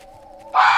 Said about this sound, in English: What the hell was that? It's just foxes. That's their mating call. It sounds like someone screaming in pain. It's not. But someone screaming in pain would sound just like that. It's almost certainly not.